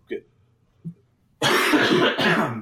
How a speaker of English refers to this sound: I'm going to do a real cough now real quick, and you guys are going to enjoy the audio. Here we go. Oh, jeez.